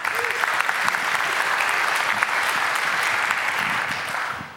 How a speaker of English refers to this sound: Come on, come on, come on down. Give her a big clap.